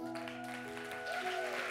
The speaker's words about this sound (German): Lass uns doch diesen Leuten einen Applaus geben.